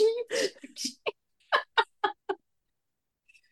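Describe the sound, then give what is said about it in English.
A person imitates a chicken: a few squawky, drawn-out calls followed by five quick, evenly spaced clucks, then near silence. “So whenever they call someone a chicken and trying to do the quack, quack, quack, quack, they do everything but that.”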